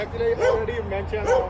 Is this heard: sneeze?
no